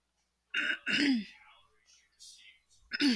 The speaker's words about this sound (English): Sorry, y'all, I'm clearing my throat.